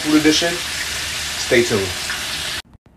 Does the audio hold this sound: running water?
yes